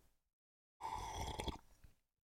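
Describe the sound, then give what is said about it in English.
A single loud, wet slurp of a drink lasting under a second, with a gurgly, airy rasp that tapers into a brief softer trailing sound. No one speaks. “Oh yeah, that was a good slurp.”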